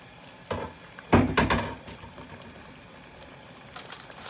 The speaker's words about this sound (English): And I've lifted up the lid and I hear that it's boiling. So I'm going to put the lid aside. We don't need it.